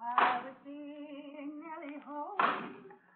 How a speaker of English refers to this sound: People like Joe and Marion Starrett. That's Joe chopping wood out by the barn.